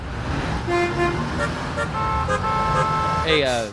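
Several car horns honk in overlapping bursts over a dense rumble of road traffic, sustained tones blaring one after another throughout, with a sharper, rising horn blast near the end.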